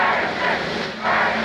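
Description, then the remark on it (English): A steady, broad roar of a crowd cheering, coming through a television, holding loud throughout with a brief dip in the middle before swelling again. “Ferguson kills himself as the crowd is cheering on his son. You can hear it from the television.”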